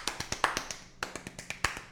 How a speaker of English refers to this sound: Insert clapping shit here.